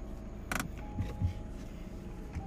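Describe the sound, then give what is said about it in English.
A car approaching on a street, its low engine rumble holding steady in the background, quiet, with a brief sharp click partway through and no voices. “I have this car coming my way, so I'm waiting for them to pass by.”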